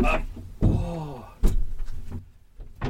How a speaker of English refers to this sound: Let me just open a side door and let some air in, because it's not a hot day, but it's a warm day, and I would like some air. Oops, for some reason I've locked my side door. I don't know why. Let's just do this. There we go. Open up that.